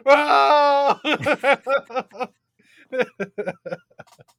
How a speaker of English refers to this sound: Crying continues, the subtitles say.